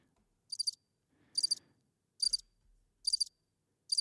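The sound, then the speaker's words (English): Crickets chirp in regular pulsed bursts, five trills spaced about 0.8 seconds apart, clear against an otherwise quiet background with no talking; used as a waiting sound effect. “Now I should have like this waiting sound or something. Maybe crickets.”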